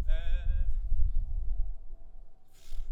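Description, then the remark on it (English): A person gives a short, wavering whinny imitation, a shaky high-pitched neigh lasting under a second, followed by low rumbling background noise and a faint breathy hiss near the end. “Being a horse?”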